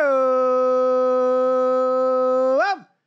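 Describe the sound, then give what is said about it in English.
A dog named Muddy Waters lets out one long howl, holding a steady, strong mid-pitched tone for over two seconds before a quick upward bend and a falling drop as it ends. No other sounds. “Muddy Waters, my dog, getting in on the Muddy action.”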